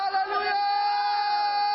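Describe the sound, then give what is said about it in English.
An audience at a morning worship service shouting to God with cries of joy, many voices overlapping in one loud, sustained roar of cheering and whooping that holds steady for nearly two seconds without letting up. “Shout to God with cries of joy. Shout!”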